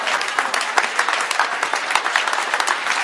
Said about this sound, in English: Can you clap your hands, please?